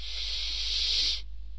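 A single long, deep inhaling breath, a steady airy hiss lasting just over a second before cutting off, fairly loud, with a faint low hum underneath and no talking.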